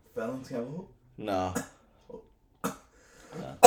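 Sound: coughing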